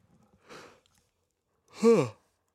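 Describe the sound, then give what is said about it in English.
Someone yawns: a soft breathy inhale, a short pause, then a louder drawn-out voiced exhale that bends in pitch before trailing off. No speech. “Wow, that yawn has been coming on for a while.”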